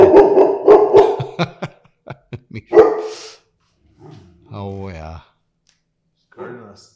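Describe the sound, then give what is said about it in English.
A dog barks in a quick, loud burst of several barks, then lets out a few scattered single barks, followed by quieter drawn-out whimpering sounds after a pause. “Hey, dogs are always tough when they are around.”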